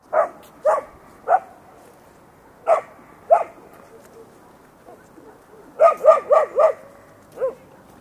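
A dog barks repeatedly in short, sharp yaps, a few spaced-out barks first, then a quick burst of four in a row and one last bark, with no talking.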